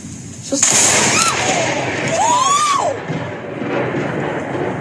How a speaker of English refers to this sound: You know how close that lightning was?